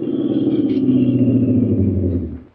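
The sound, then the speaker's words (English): A car engine rumbles steadily on a highway out of town, its low drone easing off as the car slows down, then fading away as it comes to a stop for a hitchhiker. No one speaks. “As I hiked along, I kept thumbing cars. The fourth one slowed down and stopped.”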